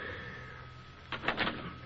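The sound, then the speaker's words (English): A door is opened with a short, rattling clatter of the latch and hinges, following a second of quiet room hum. “Papa, please answer the door.”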